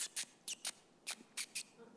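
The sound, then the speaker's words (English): Someone imitates a mouse with a string of about seven short, high-pitched squeaky chirps in an uneven rhythm. The squeaks are fairly soft, with no talking around them. “You know, like a little chirpy of a mouse.”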